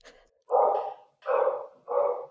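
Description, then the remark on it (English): Dogs barking: three loud, full-throated barks in quick succession, each lasting about half a second, with no talking over them. “And the dogs are also done with Midsummer.”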